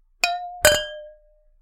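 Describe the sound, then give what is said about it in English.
Two bright clinks of wine glasses touching in a toast, fairly loud, each leaving a clear ringing tone that fades out over about half a second. “So are you ready to try it? I am so ready for this wine. All right. Cheers”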